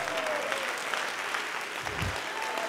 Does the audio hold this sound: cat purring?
no